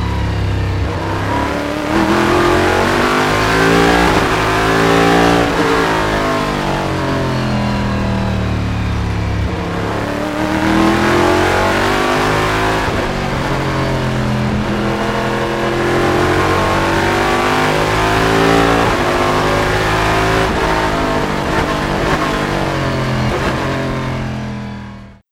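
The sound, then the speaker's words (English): The loud 5.5-liter V8 engine of a Corvette prototype-series race car revs and roars continuously, its pitch sweeping up and down through repeated gear changes as it passes by, with no talking. “Well, and for proof of that, here is a similar engine in a completely different car.”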